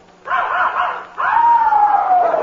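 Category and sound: animal, puppy barking and yipping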